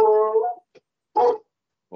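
A dog lets out a drawn-out, high whine, then after a short pause gives a single sharp bark, with another bark just starting at the end. Fairly loud, with no talking.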